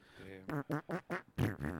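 A quick run of buzzy, pitched fart sounds from a fart compilation video, about five short blasts in a bouncy rhythm, loud, almost like a melody played on farts.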